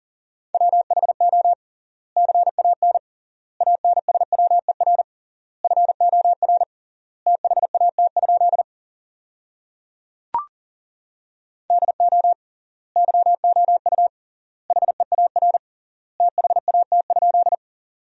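A steady mid-pitched tone keyed rapidly on and off in fast Morse code at 40 words per minute, sending practice sentences built from the top 300 words. Short bursts are grouped into words separated by triple-length word spacing, with a single brief click partway through.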